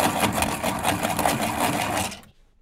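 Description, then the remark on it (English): A gray wall-mounted pencil sharpener grinds steadily as a number two pencil is sharpened, for about two seconds, a harsh, rhythmic rasping with quick pulses from the crank, then stops abruptly into silence. No one speaks. “That gray sharpener hanging off the wall?”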